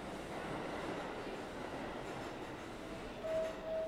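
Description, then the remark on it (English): A subway train at Eastern Parkway, Brooklyn Museum Station in Brooklyn rumbles steadily, a dense low roar of wheels and machinery, with a thin high whine rising near the end. No one speaks. “Made it. Eastern Parkway, Brooklyn Museum Station. Transfer to the 3-4 across the platform.”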